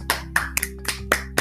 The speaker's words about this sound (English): A round of applause